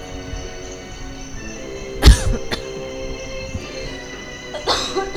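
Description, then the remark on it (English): A loud cough bursts out with a quick second hack right after, and a rough throat clearing follows a couple of seconds later over a steady low background hum. “I mean to cough in your faces.”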